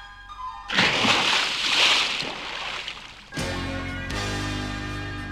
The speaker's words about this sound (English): Suddenly, to everyone's surprise, Duck jumped right out of the wolf's throat and landed with a splash in the cool, safe pond.